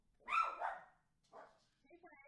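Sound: dogs barking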